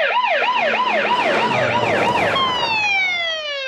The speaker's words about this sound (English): Oh, all cop sirens sounded like this in the late 70s and early 80s. They just all sounded like this.